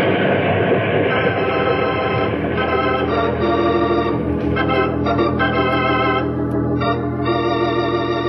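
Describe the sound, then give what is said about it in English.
A coal-fired steam train runs steadily along the tracks, a loud, continuous rumbling clatter with a droning mechanical hum layered over it and no voices. “We can't run the risk of wrecking the train.”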